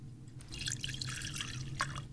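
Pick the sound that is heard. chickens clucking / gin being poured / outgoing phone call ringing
gin being poured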